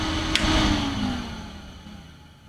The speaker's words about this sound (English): Actually, I'm going to shut the system down. Here's the clunk.